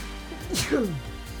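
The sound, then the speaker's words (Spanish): A single small sneeze: a quick, breathy burst of air followed by a short voiced tail that slides downward in pitch, moderately loud and over almost at once. “Ay, disculpen, un estornudillo.”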